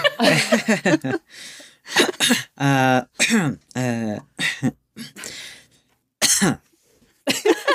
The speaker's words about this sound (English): That's uncomfortable coughing. I never gave you a cough, but I like I like where you're going.